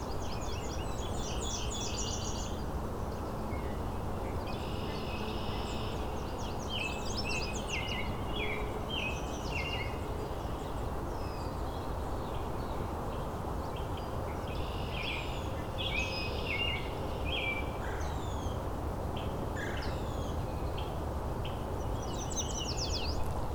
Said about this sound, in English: There's a Nashville warbler in front of me. There's a Nashville warbler.